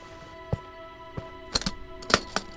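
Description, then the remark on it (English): Sharp, clicky key strikes tapped out irregularly, a few isolated hits followed by a quick cluster, against a faint steady hum with no voices. “That's what makes it sound so real is the sound of the keys.”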